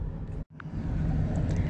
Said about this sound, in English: Thank you for joining me on my drive to work. You guys, my car is so jacked. Like, seriously, I have the oldest car in history. I think it's like a 2001. And I love my car. Her name is Tawanda.